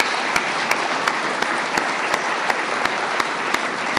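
A crowd at an Alcoholics Anonymous meeting claps steadily for a speaker who has just shared, a dense wash of many hands with a few sharper claps popping out at an even pace. No voices, just sustained applause throughout.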